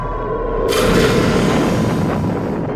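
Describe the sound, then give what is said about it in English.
A rocket ship crashes into a planet: a loud crashing boom bursts in suddenly, a broad roar of impact that rumbles and hisses on for about two seconds, with no voices. “As the rocket ship slams into the planet, the force of the impact rips the seatbelts apart, and Dr.”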